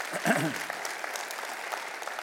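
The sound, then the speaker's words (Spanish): An audience at a church service applauds the Lord, clapping steadily in a dense wash, with a brief voice rising over it at the start before the clapping carries on evenly at moderate loudness. “Si Dios le habló, de un aplauso al Señor, que Él se lo merece.”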